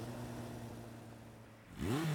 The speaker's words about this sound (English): Hey, that looks like their bus. You guys, I think she can tell. It's a school bus.